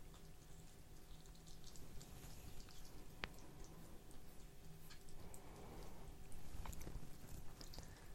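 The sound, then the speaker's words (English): Soft, steady munching and crunching, with faint irregular clicks and ticks over a low hum, as a pet eats food from its dish on the floor. No one speaks. “And now he's eating it. He's munching away.”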